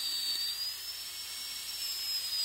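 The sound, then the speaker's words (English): A dental drill used during a teeth cleaning whirs with a steady, high-pitched whine that climbs slightly in pitch and holds for a couple of seconds over a faint hiss, with no one talking. “This sound is, you know, when you're getting your teeth cleaned, that drill, that dental drill, that's it.”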